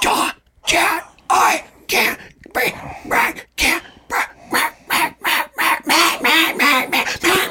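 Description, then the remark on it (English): A breathless voice, as if winded with the air knocked out, imitates a goose, pushing out a rapid string of about fifteen raspy, honking bursts in a steady rhythm, with no other talking. “If I knocked all the air out of you and you're trying to tell me a secret that you need help, you would go like this.”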